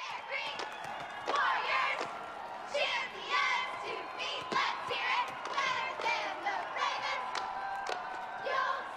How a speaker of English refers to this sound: Either way, the reigning champs, the Bear Creek Warriors, start out. And they even have a line in their little cheer about being better than the Ravens.